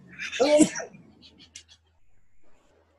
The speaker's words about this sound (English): Who sneezes like that? You know that cat? Please put that in. Okay, for you, I'll leave it in. Sorry, people. I have a strange sneeze.